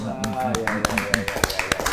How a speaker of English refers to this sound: Somebody clap for Jesus. Amen. Somebody clap for the Lord Jesus. Somebody clap for the Lord Jesus. My God. Somebody clap for the Lord Jesus.